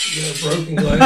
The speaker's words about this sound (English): Broken glasses.